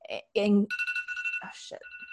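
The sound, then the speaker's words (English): A phone alarm, set as a reminder to pick up children, goes off with a steady, high electronic tone that pulses rapidly, while people talk over it in short bursts. “That's the alarm to pick up our children.”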